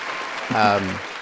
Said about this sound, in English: oh, this is where the soundtrack comes in. I do an applause.